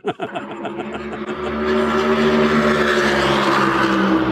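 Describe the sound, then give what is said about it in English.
A loud race car engine roars on a racetrack, its harmonic whine rising and sustained as it passes, after a brief stuttering start. “And trying to get questions in between the passes of these cars is tough, but these cars sound a little bit louder, a little bit different, a little bit heavier than what I've heard in the past.”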